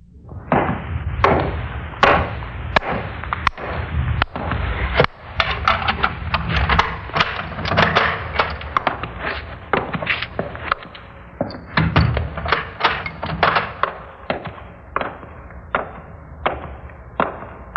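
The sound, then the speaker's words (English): A long run of heavy doors closing and locks clanking shut at a youth house, one solid thunk after another in an uneven rhythm, loud, with no talking. “A lot of locks and doors, aren't there, miss?”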